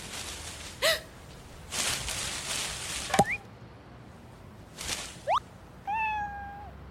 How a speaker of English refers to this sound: Oh, a cat. Hey there, little guy. Oh, what's wrong?